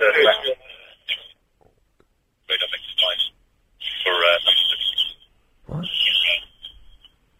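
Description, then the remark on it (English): Bursts of harsh, crackly buzzing interference, like a mobile phone disrupting a line, come in four uneven pulses with short silent gaps, tinny and distorted, with garbled voice-like warbling mixed in. “Well, that's interference from your mobile phone.”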